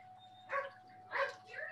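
A female dog barks and yips in two or three short, high bursts, moderately quiet, over a faint steady electrical hum.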